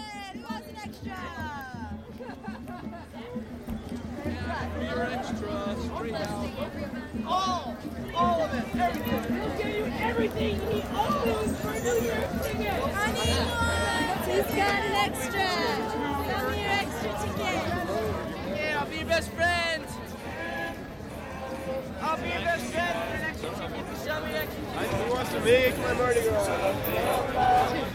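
A crowd of many voices chattering at once outside concert venues such as the Spectrum, the Garden, Henry J. Kaiser and the parking lot of Club Front: a dense, steady hubbub of overlapping talk and occasional louder calls, no single speaker standing out.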